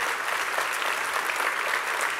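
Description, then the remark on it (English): An audience applauds steadily, a dense, even wash of many hands clapping at a constant moderate loudness throughout, with no voices heard over it. “I think, I agree, yeah, that deserves applause.”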